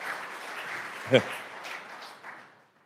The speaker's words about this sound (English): You don't have to clap after every slide unless you really want to, but.